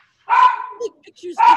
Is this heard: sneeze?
no